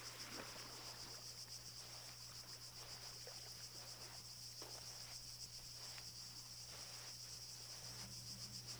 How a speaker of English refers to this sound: Grasshoppers and locusts whir like clockwork as you walk along. Then fly away on wings shining in the sun.